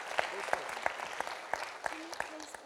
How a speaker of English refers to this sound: Why don't we give Jesus a big clap? Come on, give him a big, come on, give. Let him feel it. That's awesome.